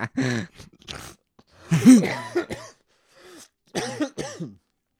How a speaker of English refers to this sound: I'm back for my coughing fit.